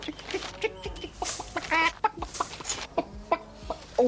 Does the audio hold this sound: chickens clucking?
yes